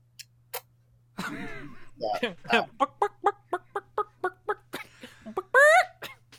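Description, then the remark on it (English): A voice imitates a chicken, giving a quick run of about ten rhythmic clucks, starting with some throaty warbling and ending in a louder squawk. “Husk walks over, half human, half chicken.”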